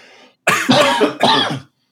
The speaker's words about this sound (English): Same time cough. Yep. Same time, we're falling apart.